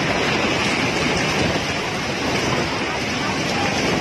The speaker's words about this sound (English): Hundreds of people were attending a beach festival when this wall of water crashed, according to a spokesman for the Indonesian Disaster Agency. Waves reached as high as 20 feet, sweeping many out to sea.